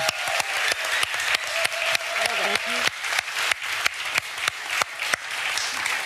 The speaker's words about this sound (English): So without further ado, let's do a round of applause for our panelists.